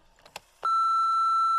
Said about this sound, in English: And all I want to hear is the message beep.